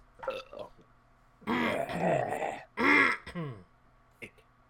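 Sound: burp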